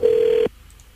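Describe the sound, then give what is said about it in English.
A telephone ringing tone on an international call to a Japanese number: one steady, mid-pitched electronic beep lasting about half a second, then quiet line hiss. No voices. “Oh, it is ringing.”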